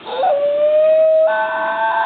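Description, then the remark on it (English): A New Guinea singing dog howls one long, sustained note that slides upward and then holds steady, turning brighter and richer in tone partway through, with no other sounds. “There it is, the New Guinea singing dog.”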